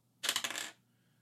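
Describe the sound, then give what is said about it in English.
A quick clatter of two ten-sided dice (D10), rolled for a spell's damage in a game, tumbling and rattling across a hard surface, a bright, clicky burst lasting about half a second before settling into silence. “I'm rolling two D10 instead of one D10.”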